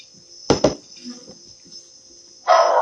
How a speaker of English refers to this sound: He's probably barking at some ants or something. Be quiet. He barks at anything.